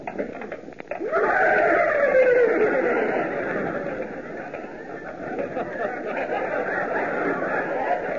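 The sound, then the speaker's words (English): Several men's voices mimic horses neighing, one loud whinny sliding downward at the start, followed by a sustained jumble of nickering and bleating noises that continues to the end. “You look almost like horses, boys.”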